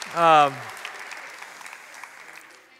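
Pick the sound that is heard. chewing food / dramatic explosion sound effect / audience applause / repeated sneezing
audience applause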